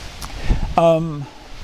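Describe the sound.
Wind buffets an outdoor microphone, producing low rumbling thumps and a steady rustling hiss, while a short voiced sound from a person cuts in partway through.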